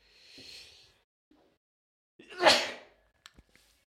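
A single sneeze: a soft breathy intake, a brief pause, then one loud, sharp, hissing burst that fades quickly, followed by a few small clicks. No one speaks.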